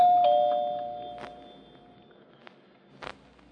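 A doorbell at a house rings once with a bright tone that lingers and fades over about two seconds, followed by a few soft, scattered thuds like footsteps. No one speaks.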